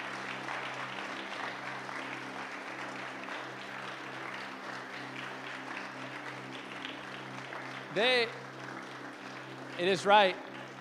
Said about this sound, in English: And so if you're in the D school class, would you please stand up right where you're at? Could you stand up, and can we just honor them, clap it out for them a little bit as they stand?